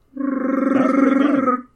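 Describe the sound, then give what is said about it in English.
A person's voice attempts a Chewbacca yell: one loud, sustained, gravelly roar with a fluttering, wavering tone, lasting about a second and a half with no other sounds. “I just want to do like a Chewbacca yell, but I can't.”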